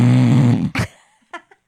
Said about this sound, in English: Is that a snore or just a sneeze? It definitely wasn't a sneeze because it was going in.